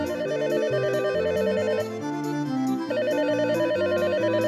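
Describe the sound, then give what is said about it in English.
A woman's phone in Tallahassee, Florida, rings with a warbling electronic trill that repeats steadily over a dense, continuous musical background, loud throughout. “and his wife in Tallahassee, Florida, was asking the Rebbe for advice, her phone rang.”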